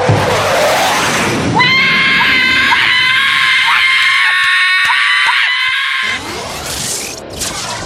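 A loud roaring rush of a Blue Angels jet flyover in Samoa on New Year's Eve gives way to a piercing, sustained shriek of Wawa birds that holds steady for several seconds, harsh, before the broad roar swells back in.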